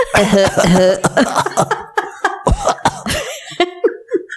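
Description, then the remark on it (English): A person coughs repeatedly, a run of harsh, throaty bursts with short gaps, mixed with voiced, laugh-like sounds and trailing into quieter huffs at the end. “These days, I don't think the cough would work.”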